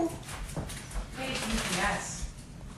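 A dachshund whimpers and whines in short, high-pitched bursts against a muffled background of shuffling and movement.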